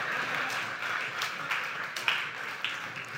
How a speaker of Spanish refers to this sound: Si, le voy a dejar que aplauda porque eso es raro que ustedes lo hagan.